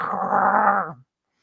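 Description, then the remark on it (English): A person growls like a dog, a single rough, gravelly snarl lasting about a second, then cutting off into silence. “and he's running around with chain, with like a junkyard chain over his shoulders, and he's like, talking like he's a dog.”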